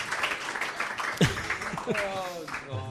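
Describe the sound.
A room full of people applauds steadily, a dense wash of clapping that carries through the whole moment, with a few voices calling out or talking over it.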